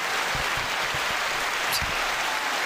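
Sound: round of applause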